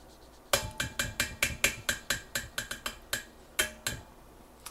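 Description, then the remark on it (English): A tablespoon scrapes and clinks repeatedly against a glass jar while scooping mayonnaise out of the jar and into a bowl, about seventeen quick, ringing taps in an uneven rhythm, fairly loud, with no talking. “So I'm just going to scoop it in the jar and pour into the bowl.”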